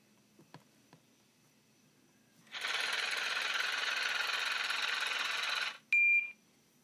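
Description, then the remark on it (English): A money counting machine whirs steadily for about three seconds with a dense, rustling buzz, then stops and gives a short, high-pitched electronic beep. No one speaks. “And I'm gonna put the money machine on it for you.”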